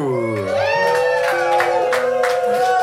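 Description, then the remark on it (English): A loud crowd in an arena at a huge live show roars and cheers continuously, with high whoops and shouts rising above a dense wall of voices, full throughout. “Really, there's like an arena watching us. This is a huge live show. And there's a huge crowd over that way.”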